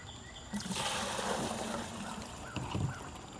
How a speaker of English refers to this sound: And then we add the lime, pickling lime, to get the pH up to 11 is what it has to be to go into its next phase. All right, pour number one of 7.